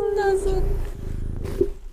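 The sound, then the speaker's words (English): A cat nuzzles right up against the microphone, its loud purring rumble mixed with soft rubbing and a brief bump, with faint voices in the background. “He just nuzzled the microphone. That's what that was.”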